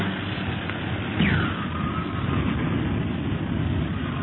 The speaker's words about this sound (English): Whee! The plane bucks like a bronco in this wind.